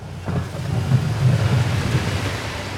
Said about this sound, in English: Plow in Worcester clearing snow. The first major storm of the season will be with us all day.